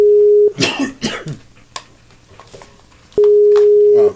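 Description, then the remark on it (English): An outgoing call's ringback tone sounds loud and steady, one burst at the start and another after a pause of nearly three seconds, with coughing and throat-clearing in the gap. “It's ringing. It's ringing.”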